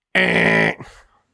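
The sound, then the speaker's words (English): A person imitates a buzzer with a single loud, harsh, buzzy tone held for about half a second, then it cuts off abruptly, leaving a brief trailing breath. “And every time you lie, she's going to, like, I don't know, like, ring a buzzer.”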